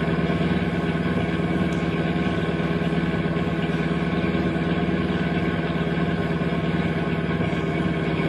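A steady, continuous rumble of car engines as cars drive alongside each other on a highway, a dense mechanical drone that holds constant and fairly loud throughout, with no voices.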